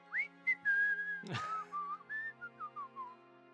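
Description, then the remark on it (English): A person whistles a casual, meandering tune alone, with several sustained and gliding notes followed by a string of short descending phrases; clear, with a brief rustle midway. “I'm gonna stay where I am, but I'm going to start doing a overt but seemingly innocent whistle.”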